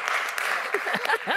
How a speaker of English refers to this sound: Give a round of applause for walking up, guys. Come on up.